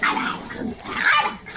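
Dogs scuffle and play-fight, with a continuous run of growls, yips and short barks that swell and ease across a couple of seconds, and no talking.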